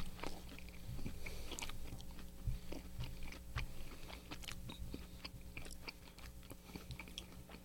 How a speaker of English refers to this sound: This guy chews like a camel. You chew like a... From the back to the front.